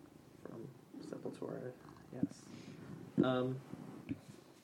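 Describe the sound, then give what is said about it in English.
A cat lets out a single loud meow partway through, with softer voice-like sounds and low rumbling around it before and after. “Sorry, there's a cat giving his opinion.”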